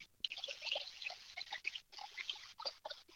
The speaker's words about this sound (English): You just got to be real quiet so you can listen to the waterfall.